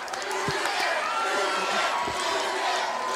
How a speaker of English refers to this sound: Listen to this crowd chanting, boys. Duggan, Duggan, Duggan. They love him.